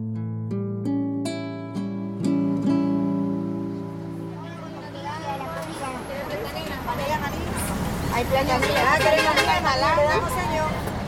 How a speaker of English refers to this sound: Estrella and I are boarding a bus to leave the only country she's ever called home. Vendors walk up and down the bus selling snacks and water.